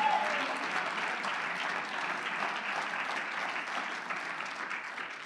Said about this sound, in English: Oh, I wish everybody would clap their hands unto the Lord.